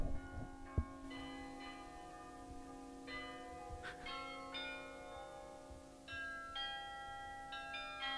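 Church bells ring out in a slow, steady sequence, each strike overlapping the lingering hum of the last, with no voices.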